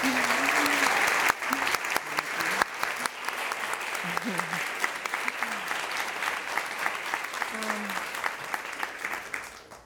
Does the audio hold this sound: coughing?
no